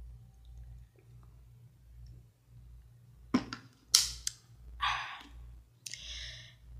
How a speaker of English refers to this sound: But let me sip on this water, as we're about to spill the tea.